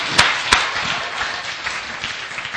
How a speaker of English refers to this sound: Give glory to God. Hallelujah. Let's get a clap offering to Jesus. Thank you, Lord. Hallelujah.